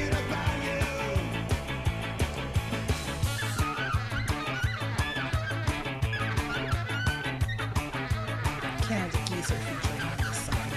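Squeezed toy geese honk over and over in a steady, rapid rhythm, many nasal squawks overlapping into a loud, busy, almost musical chorus with no talking.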